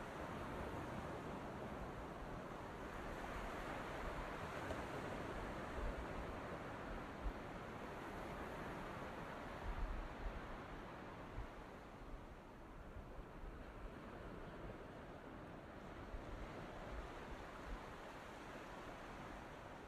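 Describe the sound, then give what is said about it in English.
Ocean waves wash steadily onto the shore in a continuous rushing roar with gentle swells in intensity, with no voices over them. “Come back and we'll just sit by the ocean together.”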